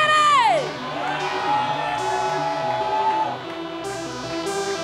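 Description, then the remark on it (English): A big concert crowd at Global Fest in New York cheers loudly, with a high whoop swooping down at the start and sustained shouts and yells carrying over a steady wash of applause-like noise. “Even though they played last that night, man, you should have seen the crowd.”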